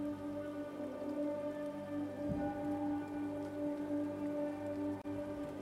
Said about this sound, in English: So is it always raining? Yes.